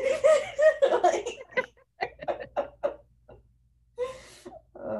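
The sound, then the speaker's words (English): A voice imitates crying, with whimpering, moan-like cries and short breathy sniffles in uneven bursts, followed by a sharp sniff-like rush of breath near the end, fairly loud. “And I'm over here like sniffling, like.”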